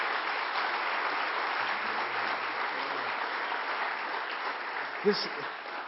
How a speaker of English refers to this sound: If he's been good to you, clap your hands. Just give the Lord a praise.